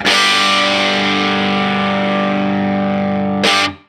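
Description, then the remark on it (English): A heavily distorted electric guitar chord, played on a Gretsch G6131-MY Malcolm Young Signature Jet, rings out loud and sustains with a thick, buzzing tone, then a short, harsh burst of noise cuts in just before it stops. “The Gretsch G6131-MY Malcolm Young Signature Jet”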